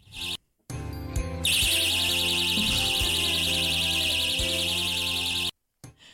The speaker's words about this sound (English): You should be able to hear what's about to happen is these safety pants. If someone tries to undo your pants without your permission, an alarm will go off.